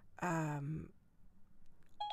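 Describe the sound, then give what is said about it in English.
A Siri voice assistant activation tone, accidentally triggered by speech: a loud, buzzy electronic chime held for about half a second, followed by a short, higher beep after a quiet pause. No one speaks. “Oops, Siri thinks I'm talking to her.”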